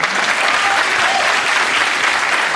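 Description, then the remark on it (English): A television studio audience bursts into steady, full applause, a dense wash of clapping at an even level for a couple of seconds, with no voices standing out. “You can applaud that?”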